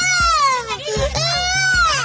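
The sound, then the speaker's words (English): Children screaming and crying for their mother on board a plane, in high, wavering wails, loud and sustained with strained harmonics, their sobs rising and falling while low rhythmic thumps pulse underneath. “The children scream for their mother”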